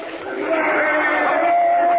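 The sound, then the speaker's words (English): A crowd cheers the governor as he comes out on the platform, shouting in a steady, dense roar of many voices that swells slightly over two seconds, with one sustained high shout or whistle riding above it. “They're cheering the governor.”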